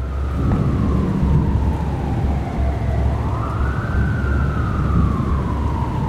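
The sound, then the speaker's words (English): An ambulance siren wails in long, slow rising and falling sweeps, loud, over a heavy rumbling wash of low noise like rain or road roar, heard while driving right behind the ambulance on the way to Revelstoke. No one speaks. “We drive right behind the ambulance.”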